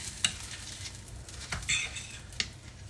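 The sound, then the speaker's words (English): Steady, hissing sizzle of Spam frying in a pan, broken by three sharp metallic clinks and scrapes of a fork against the pan as the Spam is flipped with the fork. No one speaks. “Fuck, I'm trying to flip this Spam with a fork.”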